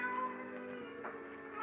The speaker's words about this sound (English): I had great difficulty in falling asleep that night. Suddenly, the silence was broken by the faint crying of a cat.